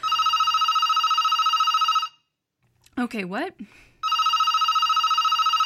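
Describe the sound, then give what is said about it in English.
A landline telephone bell rings loud in a rapid, continuous trill, breaks off while a person speaks briefly, then resumes ringing. “Yeah, that's the landline ringing.”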